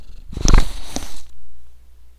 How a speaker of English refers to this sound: Dave, you're purring loudly.